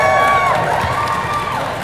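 A loud crowd in New Jersey cheers and whoops together, a dense wash of many voices with a few high shouts rising above, sustained throughout the short burst.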